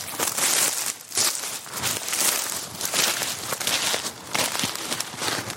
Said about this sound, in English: Do you want to go through the wood, Rose? Come on, let's do it. Ooh, crunchy bracken.